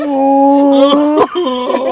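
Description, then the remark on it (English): A person imitates a whale call with a loud, drawn-out moaning tone that holds steady, then wavers and dips briefly before resuming, lasting about two seconds. “Nobody in bed is like, oh god, baby, please sound like, make a whale noise.”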